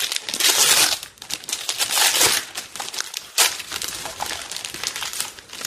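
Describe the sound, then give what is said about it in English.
Plastic package wrapping crinkles and rustles as a package is opened, in continuous bursts of crackly noise with short pauses, loudest at the start and again midway, with no one speaking. “So I've got an interesting package here.”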